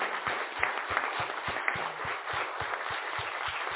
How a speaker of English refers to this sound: Thank you so much. Can we give our panelists a round of applause?